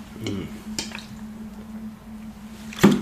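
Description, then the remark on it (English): A plastic water bottle crinkles and crackles in a few short bursts as it is handled, with a steady low hum running underneath and quiet gaps between. “Now I have a bottle of water with me here, and this is like my safety blanket.”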